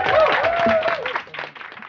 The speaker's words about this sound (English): On that, please join me in clapping with me and cheering your amazing guests.